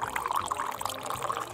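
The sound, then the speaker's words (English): Coffee pours in a steady stream into a cup at McGill's Cafe, a continuous gurgling splash lasting a couple of seconds, moderately loud with no talking. “zips over with the coffee. More coffee? He nods. She pours.”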